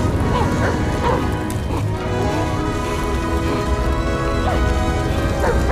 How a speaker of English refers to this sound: Dogs.